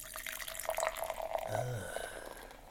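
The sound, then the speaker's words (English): Sparkling, apple-scented liquid is poured from a bottle into a glass, a steady trickle and splash with a rising gurgle, with no voices. “I'm going to pour in my glass as well.”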